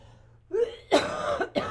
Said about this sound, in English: It's a productive cough.